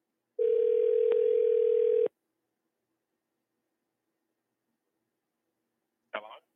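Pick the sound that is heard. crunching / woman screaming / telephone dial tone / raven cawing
telephone dial tone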